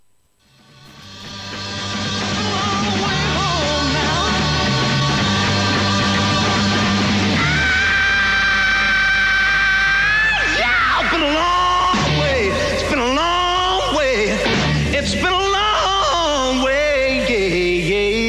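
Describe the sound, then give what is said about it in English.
A rock singer, in a live recording from August 1968 on BBC Pop North, lets out a loud, sustained scream at the end of a song, holding one piercing high pitch for several seconds before it breaks into wild, wavering swoops over the band's closing roar. “This is his scream at the end of the song.”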